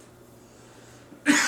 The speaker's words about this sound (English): I had to cough because just the mention of cats. So it's in my throat.